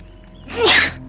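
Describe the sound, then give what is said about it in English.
A single sharp sneeze bursts out, a quick breathy intake followed by an explosive hiss that fades within a second, with no talking around it. “Bless you.”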